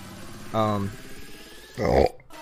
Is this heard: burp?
yes